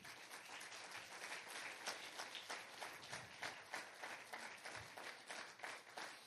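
An audience applauds for Jesus, clapping steadily for several seconds in a dense, even patter with small swells, and no voices standing out above it.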